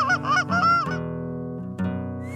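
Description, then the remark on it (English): Geese honk loudly in a burst of overlapping calls, then the honking fades into a sustained hum with one more brief call near the end. “Ooh, I love that sound.”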